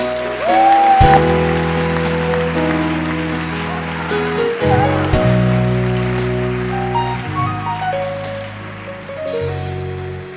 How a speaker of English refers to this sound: Is that the way you clap for Jesus?